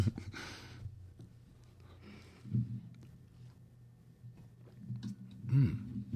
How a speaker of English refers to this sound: Hey, this drink I just made is pretty tasty. Does anybody want a sip? I'll take a sip.